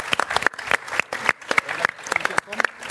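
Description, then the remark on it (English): A crowd applauds guests steadily, with dense, irregular hand claps sharp and bright throughout, sustained at a moderate level for a few seconds with a faint murmur of voices beneath. “Round of applause for our guests.”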